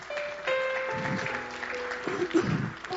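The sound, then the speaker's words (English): An audience claps their hands in a steady, dense wash of applause lasting several seconds, with sustained tones and a few voices faintly underneath. “Clap your hands again, amen?”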